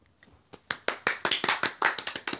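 A single person, a comedian on stage at the Curious Comedy Theater, claps for themself: about a dozen sharp, bright claps in quick succession, starting soft and growing louder, with no voices.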